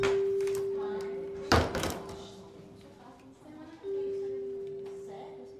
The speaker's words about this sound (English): When the door opens, he walks in.